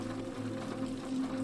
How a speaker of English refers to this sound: You return to the kitchen. The blue light of the electric kettle turns red as the water comes to a boil.